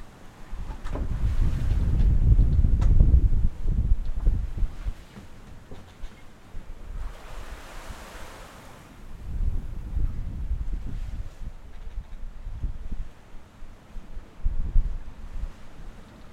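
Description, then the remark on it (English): A sailboat moving through the water, with wind buffeting the sails and rumbling across the microphone in heavy gusts, plus a brief hissing wash of spray or waves midway. “Stop for a second and you get the sound of the boat moving and the wind in the sails.”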